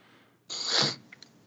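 A single sharp sneeze bursts out, a brief hissing blast followed by a couple of faint clicks and quiet breath. No one speaks.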